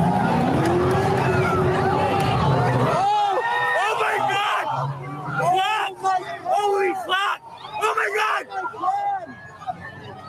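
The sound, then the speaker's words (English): A police car engine roars and accelerates for a few seconds as the car, emergency lights on, drives into a crowd, then gives way to the crowd yelling and screaming in loud, chaotic, overlapping bursts as people are run over. “They got run the F over by a police car because the police decided, I've got my emergency lights on.”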